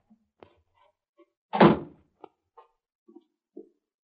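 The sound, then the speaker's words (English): A single heavy, booming thud of a cellar door closing at the back of a house near 1.5 seconds, surrounded by a few small knocks and clicks in an otherwise quiet space. “That's the cellar door.”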